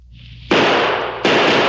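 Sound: rifle gunshots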